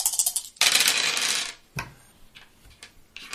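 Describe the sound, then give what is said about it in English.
Hard little clicks of dice rattle, then a dense burst of clattering as the dice tumble across a table, followed by a few scattered knocks as they settle. “Why did you get rid of 3 dice? 2 dice were added for the damage.”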